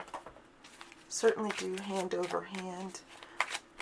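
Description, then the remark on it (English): A deck of cards being shuffled for a weekly card reading, a steady run of crisp papery riffles and flicks, with a person's voice sounding briefly over the middle of it. “Now, we begin by shuffling our deck. And you can certainly do hand over hand.”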